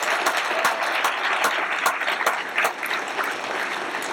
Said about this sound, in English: Can we give Jesus a round of applause? He's worthy.